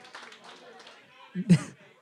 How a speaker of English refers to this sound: Team number 8 getting the win with 7 points. Round of applause, team number 8.